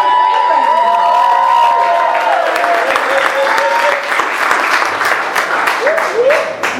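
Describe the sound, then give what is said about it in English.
A crowd cheers and applauds loudly and steadily, with dense clapping under rising whoops and shouted voices that swoop up and down in pitch. “Come on. Let's cheer for people.”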